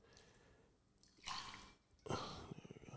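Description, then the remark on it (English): Liquor, 1800, pours from a bottle in two splashing bursts, the second ending in quick rhythmic glugs. Nobody speaks. “Let's pour a little more liquor. Pour it out, pour it out, pour it out.”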